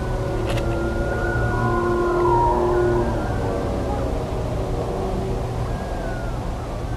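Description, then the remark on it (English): A drawn-out howling cry rises and falls in long wavering tones, a man yelling outdoors as if imitating a coyote, carried over a steady low rumble of outdoor background noise. “Okay, I'm just going to say, and I didn't notice this before until, it sounds like there's a man yelling out there like he's trying to be a coyote.”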